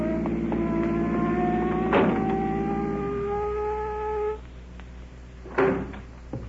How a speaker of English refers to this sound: Look at that car coming up here. Looks like a cop in it. Oh, it is a cop.